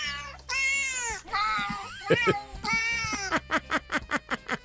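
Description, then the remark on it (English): A human voice imitates a cat, "translating" a phrase into cat language: several drawn-out, wavering meows, then a quick rhythmic run of about eight short, high mews, fairly loud with no other talk. “So what do you want me to translate to cat language very quickly?”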